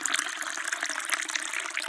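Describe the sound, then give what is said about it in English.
A steady stream of liquid splashing and gurgling as it pours into a cup, continuous for a couple of seconds with no voices. “and you're chopping a vegetable and you're hoping that you're not going to chop your finger off, and pouring things into a cup.”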